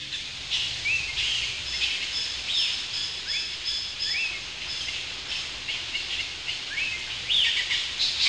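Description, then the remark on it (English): Birds chirp steadily outside a window on a sunny morning, a busy chorus of short, high tweets and trills repeating throughout, moderately soft, with no voices. “But what I really love is the sounds of the birds chirping outside my window on a beautiful sunny morning.”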